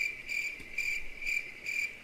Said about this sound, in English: I keep forgetting about it, so like when I remember, I wish you just looked down and you're like, "Ooh, crickets, push buttons."